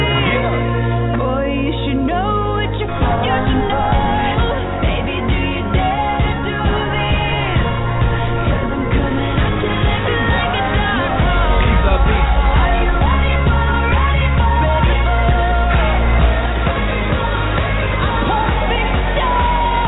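A loud, energetic intro theme song for a show host plays continuously, with a heavy pounding bass line and dense layered instruments; no one speaks over it.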